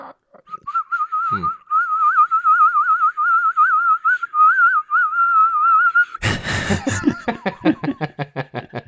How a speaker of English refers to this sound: I remember kindergarten. Yep. I got in trouble. Yeah, whistling. Whistling. Yeah. I was just in the bathroom. Yeah. Just going.